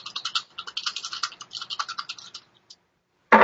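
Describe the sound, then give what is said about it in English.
Dice rattle and clatter in quick, dry bursts for a couple of seconds, then a brief pause before they land on a table with one loud thud. “They just don't roll. They just go, conk.”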